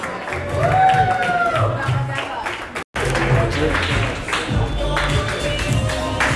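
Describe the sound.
A crowd claps and cheers steadily for several seconds, a loud, dense wash of applause mixed with whoops and shouting voices, broken by a brief instant of silence partway through.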